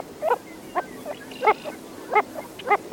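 A Wilson's Phalarope gives a series of short, nasal, grunting calls, about six notes spaced unevenly over a few seconds, with a soft background hiss.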